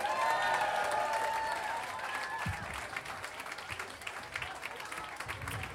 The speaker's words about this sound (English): Thank you so much for your applause, for your attention.